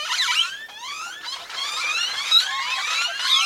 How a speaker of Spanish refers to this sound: Los zanates traquetean, chillan, silban y chirrían. A veces incluso suenan más como una máquina que como un ave.